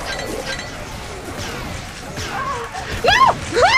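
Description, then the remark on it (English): Busy video game battle noise with a steady wash of crunchy, rumbling explosions, ending in a couple of louder bursts with swooping, whistling tones on top. “Booms.”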